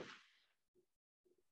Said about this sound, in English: I generally don't get fireworks. This is gonna make for good viewing. This. What is going on? It's not too bad here. Not too bad at all. It's literally one of my neighbours.